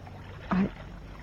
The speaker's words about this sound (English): I didn't know you could handle a boat